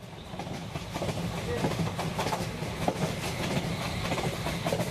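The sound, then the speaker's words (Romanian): A train travelling to Bucharest, Romania, clatters steadily along the rails, its low rumble broken by regular clickety-clack beats from the wheels over the track joints, fairly loud throughout. “Cine dracu să mai stea după bilete de tren la așa urgență?”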